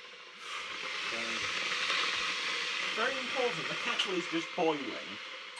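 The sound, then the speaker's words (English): A kettle boiling with a steady, rushing hiss that fills the whole stretch, while voices talk faintly underneath it. “Very important, the kettle is just boiling.”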